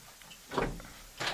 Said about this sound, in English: Okay, we'll open the door and let him in. Okay. Sure. I'll open the door right now. Okay.